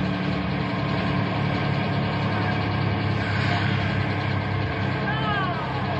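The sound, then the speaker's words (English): A bus engine idles with a steady, loud, low rumble that runs unbroken for the whole stretch while a group of boys board, with faint murmuring voices mixed into the background. “No talking until the bus gets going, so we know that everyone has a seat.”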